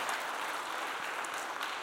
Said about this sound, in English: Give God some praise this morning. You can clap anytime you want to. Praise God.